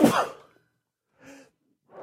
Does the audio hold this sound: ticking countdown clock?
no